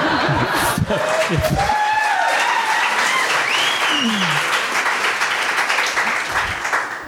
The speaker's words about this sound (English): That's my Robert Frost impression. So I'm supposed to burst into applause after that.